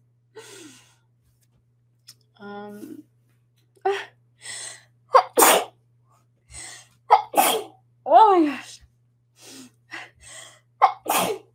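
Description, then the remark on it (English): A fit of repeated sneezes during a live stream, several sharp, loud bursts over a few seconds, each preceded by a quick inhaling gasp, with a brief spoken exclamation in between. “I need to go blow my nose.”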